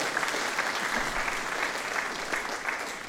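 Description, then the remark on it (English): An audience applauds steadily for an absent man during a live-streamed worship service, a dense, even wash of many hands clapping at a constant level for the whole stretch, with no voices rising above it. “He can be encouraged when he watches the live stream back and hears your applause.”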